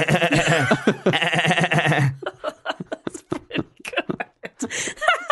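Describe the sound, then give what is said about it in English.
A voice imitates a baby goat's bleat: a loud, quavering, nasal cry held for about two seconds, followed by talking and a bit of chuckling. “Is there some sort of baby goat inside the nest?”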